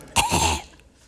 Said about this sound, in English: Excuse me. Nothing like coughing into a loud microphone.